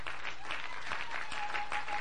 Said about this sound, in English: Shall we clap our hand for the Lord?